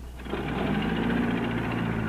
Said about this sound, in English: Fire up the old Packard, will you? Coach, that's just the way it was starting with me. Well, that's the way it's been starting ever since 1937. Listen, it's purring like a kitten.